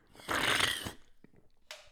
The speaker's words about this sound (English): See, yours was a lot smoother. Exactly. Mine was the aggressive slurp.